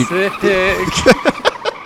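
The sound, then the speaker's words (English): A voice imitates a car peeling out, with a drawn-out, wavering squeal of tires followed by a few quick, punchy revving bursts, fairly loud. “Y'all peel out of there.”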